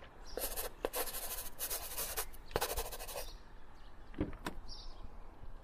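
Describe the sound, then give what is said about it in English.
A pen scratches across a paper document in quick strokes as it is signed, a busy burst of scribbling followed by a few short marks and a pause, with no one speaking. “So, just sign right here.”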